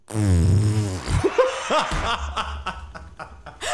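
A sleeping woman farts in bed with a low, buzzing noise that wavers for about a second, then gives way to several short bursts of snickering, chuckling laughter.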